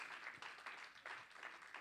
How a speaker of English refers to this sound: If you feel that, can you clap your hands unto the Lord?